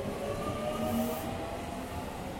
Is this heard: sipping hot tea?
no